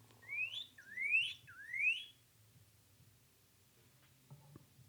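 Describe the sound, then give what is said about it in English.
A recorded bird call plays three times in quick succession, each note a bright, rising whistle, fairly loud and clear, followed by a couple of seconds of near silence with a faint low hum. “You know what else might suck? This bird.”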